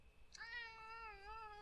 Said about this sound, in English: Ray, Ray, you're so good. You are good. I love that cat.